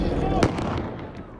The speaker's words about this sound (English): I'll never forget the gunshots.